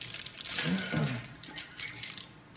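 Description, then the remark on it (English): Crackly rustling of a large zip-tied plastic package bag being handled and crinkled open, in irregular bursts throughout, with a brief murmur of a voice partway through. “They come in a big plastic bag because they have already opened them.”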